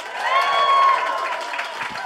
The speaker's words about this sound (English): We always start these live shows by asking for a round of applause. If you've ever heard our podcast, Do Go On before.